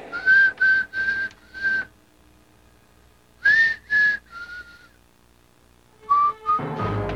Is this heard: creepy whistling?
yes